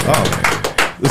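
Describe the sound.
A brief, modest round of applause: a handful of sharp claps in a quick, uneven rhythm for about a second, with a faint voice murmuring underneath.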